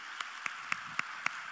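A church audience applauds pastor Francisco and sister Lizzy, who are watching online: about five crisp, evenly spaced claps stand out in a quick steady rhythm over a constant soft hiss, with no talking.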